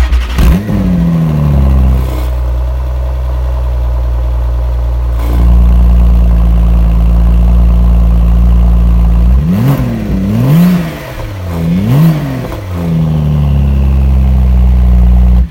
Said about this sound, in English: You guys would like to probably hear John's personal Porsche GT2 RS. He did a cold engine start that day